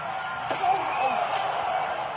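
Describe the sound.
Two sharp metallic steel chair shots crack out about a second apart during a wrestling match fought on the steel roof of a cell, ringing over a loud, steady arena crowd roar with faint voices mixed in.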